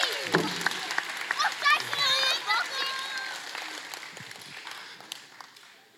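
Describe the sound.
An audience claps steadily in a dense patter of sharp hand claps, with children's high voices calling and cheering over it. The applause holds for several seconds and tapers slightly toward the end.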